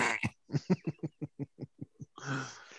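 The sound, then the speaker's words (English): A person imitates a dying giraffe, as in a scene from South Park: a rapid string of about a dozen short, low, throaty pulses that gradually weaken, then a final drawn-out raspy, breathy groan. “I just had that scene from South Park where he's like, I'll make the sound of a dying giraffe. And what's that sound like?”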